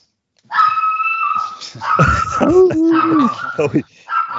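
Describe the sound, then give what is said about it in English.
A female dog howls in long, wavering, drawn-out notes that rise and fall, with a few shorter whimpering yips mixed in, fairly loud and with no one talking. “She always howls at the most appropriate time.”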